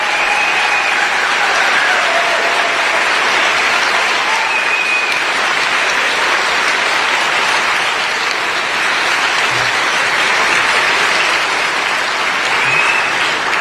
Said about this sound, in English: Biggest applause line.